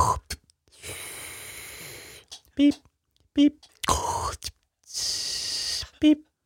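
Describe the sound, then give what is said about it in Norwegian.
A person imitates a medical breathing machine, as used under anesthesia, with their voice: two long, steady hissing whooshes of air, separated by short voiced bursts and clicks. “Så ser dere en pustemaskin, så er det sånn”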